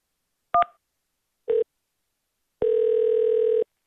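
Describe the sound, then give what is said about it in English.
A short two-note keypad beep, then a brief lower tone, then a steady hum-like tone holding for about a second; crisp electronic telephone tones from dialing through a church parish office phone menu, with no voices. “To reach the parish office, dial 1. To reach the interim rector's office, dial 2.”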